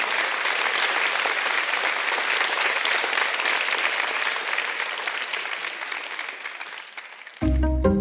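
An audience applauds an author at the end of a book session, with dense, steady clapping for about seven seconds, easing slightly in loudness before it abruptly cuts to a brief tonal, musical sound at the very end.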